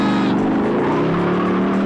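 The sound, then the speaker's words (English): A car engine roars steadily at about 100 miles an hour during a police pursuit of a 1971 Firebird on US 90, a loud sustained drone with a slight rising pitch, with no voices over it. “1971 Firebird, we're riding 100 miles an hour.”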